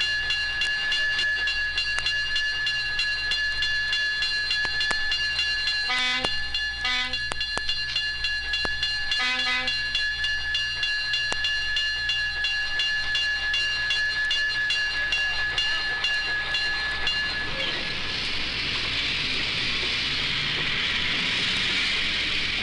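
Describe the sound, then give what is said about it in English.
A toy train bell on the Cannonball Special rings in a few quick bursts as the train motors start, before the train moves, over a steady mechanical hum and scattered clicks, then a rushing hiss builds near the end. No one speaks. “Now you ring the bell to tell everyone that the train is going to move.”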